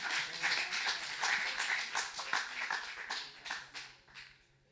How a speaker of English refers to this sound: Wow, that was awesome. I think she gets a better round of applause for that one. That was amazing, you guys.